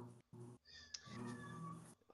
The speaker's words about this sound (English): And we do have a meowing cat, I apologize.